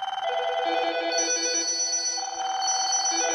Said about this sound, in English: accidentally set off 1,000 phones all at once at 7 a.m. in this Melbourne high-rise office building